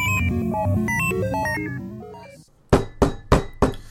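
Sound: knocking on a door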